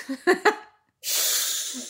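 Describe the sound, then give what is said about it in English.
A person imitates a cat's hiss: after a couple of short breathy chuckles and a pause, a loud, sustained airy hiss runs for about a second. “Can you give us a hiss?”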